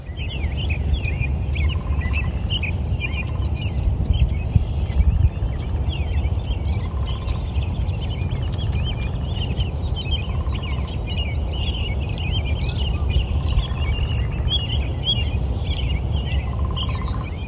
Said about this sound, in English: You can hear red-breasted woodpeckers, red-winged blackbirds, cardinals and robins.